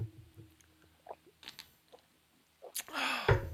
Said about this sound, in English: What are you drinking? Because I've heard you take a couple of gulps already.